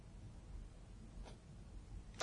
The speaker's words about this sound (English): That clicking, if you hear the ratchet joints, those are because it's that heavy. He's all metal. this is the masterpiece Optimus Prime MP01.